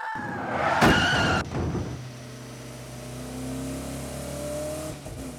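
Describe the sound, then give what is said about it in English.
At dusk, a car roars with a sharp burst of tire screeching, then its engine drones on steadily as it speeds away without stopping and disappears around a bend, fading slightly toward the end. “It came out of the gathering darkness, wavered tragically for a moment, and then disappeared around the next bend.”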